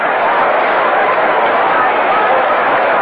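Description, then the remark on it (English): A steady, dense murmur of a large baseball stadium crowd in Washington, D.C. on a humid day, many voices blending into a continuous buzz that stays loud and even throughout, with no single speaker standing out. “You can hear the crowd buzz.”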